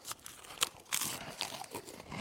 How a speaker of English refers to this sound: I feel like the chewing noises that are going on here are like ASMR. You guys are like inadvertently doing ASMR for your fans.